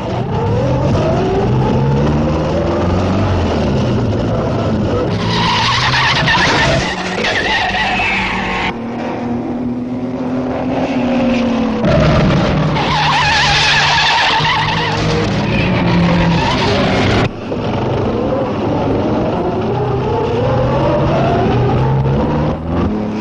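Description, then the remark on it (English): Loud sports car engines roar past in quick succession during the Irish Grand Prix sports car race on a hot day, tires squealing and skidding through newly tarred corners, with engine revs rising and falling throughout and no voices. “Ireland starts her own Grand Prix and makes it a sports car race.”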